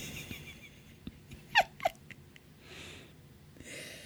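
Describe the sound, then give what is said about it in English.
A person imitates a cat with two quick, high-pitched meow-like chirps in close succession, followed by soft breathy noise. “Meow like a cat.”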